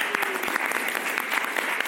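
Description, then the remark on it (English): An audience claps steadily, a dense, sustained patter of many hands with sharp crackling transients, holding a fairly even loudness for a couple of seconds with no voices heard. “Round of applause.”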